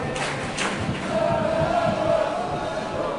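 A large football crowd sings a terrace chant together, a steady mass of voices with a sustained sung note rising through the roar, loud and continuous throughout.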